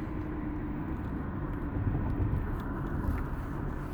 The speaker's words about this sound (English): So for now, as I'm running through traffic with idiots on I-75 and trying to keep my company vehicle from getting smashed into pieces